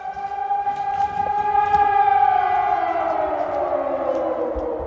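An air raid siren in the city of Kharkiv wails steadily at high volume, its tone holding and then slowly sliding downward, with faint crowd noise in the background.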